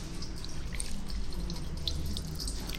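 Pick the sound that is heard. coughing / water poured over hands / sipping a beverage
water poured over hands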